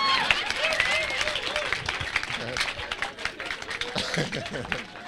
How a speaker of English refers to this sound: Make una clap for me now.